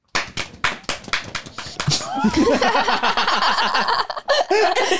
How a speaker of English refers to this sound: I was like, clap if it's too far.